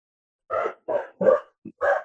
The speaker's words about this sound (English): Oh, it's okay. At the door. I have four dogs. I'm just going to wait a minute.